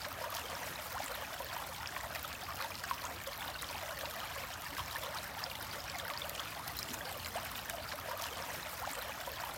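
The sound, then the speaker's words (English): Steady running water from a flowing stream, a continuous bright babbling wash with fine splashy texture, even and unbroken throughout, fairly soft, with no voices. “The sound, the water moving by you.”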